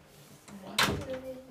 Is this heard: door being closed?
yes